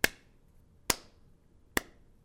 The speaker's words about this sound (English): He's apparently beating a small animal. No, I was clapping because of how exciting this is.